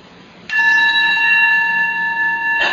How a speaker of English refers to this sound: So maybe I would like to teach you how to listen to sound. Okay? Because we have this very nice bell.